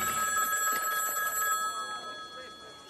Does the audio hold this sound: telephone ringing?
yes